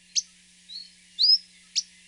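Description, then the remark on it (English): Simple high, thin calls of an Akikiki: four brief notes over two seconds, two sharp chirps framing a softer whistle and a longer rising note, clear against a quiet background. “It's become very hard to hear the song of the Akikiki lately, but their more simple call can still be occasionally heard.”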